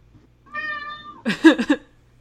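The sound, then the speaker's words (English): A cat meows: one drawn-out, wavering meow followed right away by a quick run of three shorter, rougher meows, clear and fairly loud with nobody talking. “Your cat has something to say about House.”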